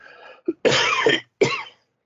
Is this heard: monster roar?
no